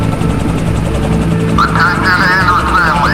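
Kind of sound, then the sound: vehicle, helicopter landing nearby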